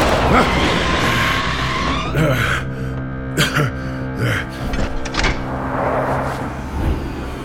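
A car speeding on back streets: the engine roars, tires skid as it swerves, and several sharp metallic bangs follow as it hits a dumpster, with a quick startled gasp amid the loud commotion.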